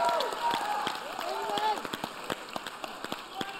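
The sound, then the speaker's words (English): An audience at New Life church claps for a first-time visitor in scattered, uneven bursts, sharp hand claps popping irregularly. Voices sing or call out over the first half, then the clapping carries on more sparsely. “I see a first time in here clap for more than.”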